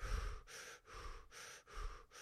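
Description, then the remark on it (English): Quick, shallow breaths repeat in a steady rhythm, roughly five short airy inhales and exhales in two seconds, moderately loud, with no talking, demonstrating shallow breathing that does not reach deep into the lungs. “Very shallow breath.”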